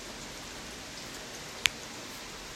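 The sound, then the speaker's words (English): A steady, soft hiss of rain falls continuously outdoors on a chilly day, heard from a porch, with one sharp drip or tap standing out partway through. No one speaks. “Listening to the rain and watching the wildlife.”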